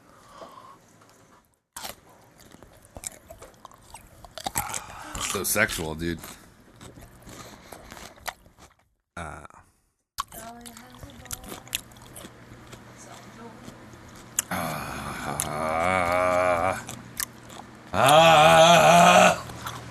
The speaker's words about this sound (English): This is a good pickle, though, isn't it? This is a great pickle. You got a good crunch that pickle. Should I bring it back? Are we done crunching? Wait a minute. Yeah. I'm just chewing on one piece of skin.